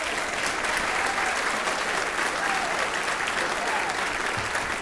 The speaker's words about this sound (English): please share some of your applause with … at the drums.